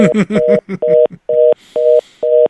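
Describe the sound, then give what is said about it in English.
A telephone line tone, a busy signal on a call, sounds in short, evenly spaced pulses, a steady electronic hum switching on and off about five times. It is clear, with a brief garbled voice-like burst at the start. “We're going to try to we're getting a dial tone.”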